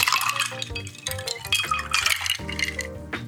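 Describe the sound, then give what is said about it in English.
A shaken mix of sloe gin and lemon juice pours with ice cubes rattling and clinking into two rocks glasses, a busy continuous splash and clatter lasting a few seconds, fairly loud with no talking. “Shake it up nice and pour the mix, cubes and all, into two rock glasses.”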